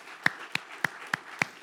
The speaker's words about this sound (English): So can we just give him a round of applause this morning for serving us so well through this book?